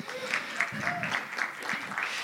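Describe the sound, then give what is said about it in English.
Steady applause from an audience for children aged 12 and under coming up on stage, a dense patter of many hands clapping at an even level for a couple of seconds, with a few faint voices underneath. “Give them a hand clap.”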